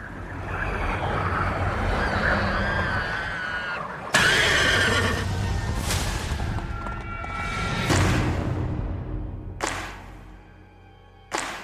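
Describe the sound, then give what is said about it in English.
Spooked horses on a ranch in the film Nope neigh and whinny loudly and repeatedly, their shrill cries rising over a dense, rumbling noisy backdrop, with sudden bursts of sound near the middle and end and no talking. “There's something out there and it's spooking the horses.”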